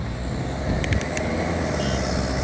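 Steady, dense street traffic roars, with vehicles rumbling past, a street cleaner working, and a few brief metallic clicks partway through. No one speaks.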